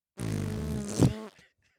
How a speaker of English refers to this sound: It'll squeeze us both through. And now if we just both fart at the same time. 3, 2, 1.